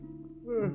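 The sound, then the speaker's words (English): A man portraying Andrew Jackson Borden, getting up in the morning in Fall River on August 4th, 1892, gives a short, voiced yawn: a low, steady hum that swells into a louder, rising-and-falling groan and then fades, all within about a second. “Andrew Jackson Borden, yawning.”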